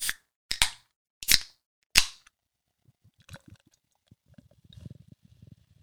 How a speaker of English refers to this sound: So we are going to try this Lakeside Kolsch. Do you want to just get into it right now or what? Yeah, let's crack it open.